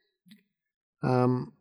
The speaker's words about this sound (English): My cat's snoring in the background, if you can hear her.